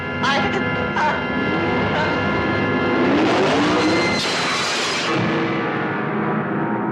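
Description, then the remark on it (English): A car engine revs up loudly, its pitch climbing, then tires screech in a harsh burst, all set within a dense, busy mix of other sounds and muffled voices. “I think I hear the engine of that car.”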